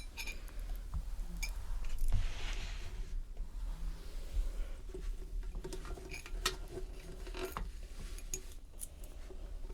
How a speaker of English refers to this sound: Back in, pop the spoon in, and then we'll grab the kettle.